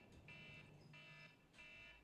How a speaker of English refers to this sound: Oh, timer again. I take another shot.